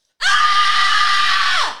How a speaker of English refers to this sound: I just need to like absolutely scream. All right, headphone users, you guys can tune out in 3, 2, 1. Let your scream go.